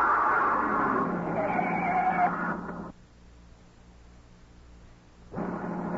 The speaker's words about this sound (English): It wasn't a shot. A front tire had blown out.